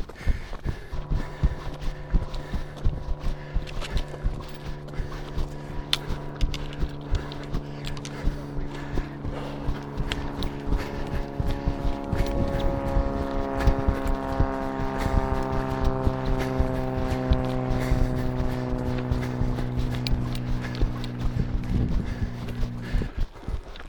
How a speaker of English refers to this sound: I can hear an aeroplane.